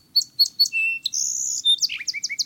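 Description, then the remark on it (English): A song sparrow hops out of a low thicket and sings clear: three crisp introductory notes, a buzzy sustained trill, then a quick tumbling run of descending chirps, with no other voices present. “Next, a song sparrow hops out of a low thicket and adds its music to the medley.”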